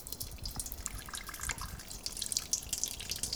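Water, 128 grams for an enriched yeast dough, pours steadily into a bowl, a continuous bright splashing trickle with small droplet plinks, lasting a few seconds with no one talking.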